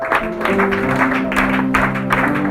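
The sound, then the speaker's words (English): An audience clapping for Jesus, loud and continuous, a dense wash of many hands with pulsing surges, while steady sustained musical tones hum underneath. “If you are clapping for Jesus, let me louder.”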